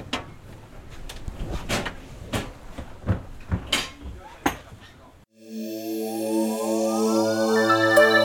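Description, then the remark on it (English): A boat door is worked open with a string of sharp clunks, knocks and rattles. The door noise then cuts off as a steady, layered tonal hum swells in. “Right, let's tackle this door.”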